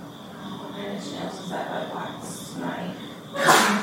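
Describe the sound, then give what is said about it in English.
A single sharp, loud sneeze bursts out near the end, following a few seconds of low murmuring voices and faint breathy sounds. “Bless you.”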